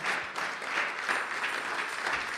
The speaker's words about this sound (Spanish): Amén. Oh, gloria. Denle un aplauso a nuestro Dios.